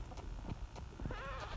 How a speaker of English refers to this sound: I hear two goats. I see two goats. They're shooting. You hear them?